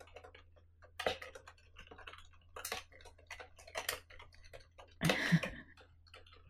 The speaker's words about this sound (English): Now, if you'll permit me to do some typing. No. I can type quietly.